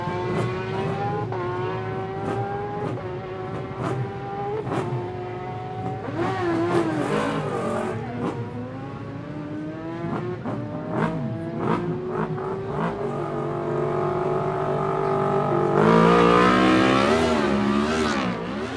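Superbike engines rev hard and roar off together as riders head off for the first big bike race, the RST Superbike race, heard from about 6-7 feet away; their pitch climbs in repeated rising sweeps, growing louder toward the end, with no voices over the constant engine noise.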